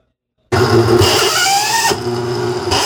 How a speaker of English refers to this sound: May have just blown up my blender.